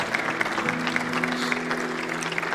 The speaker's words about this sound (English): Yeah, you can give God a round of applause. That's incredible.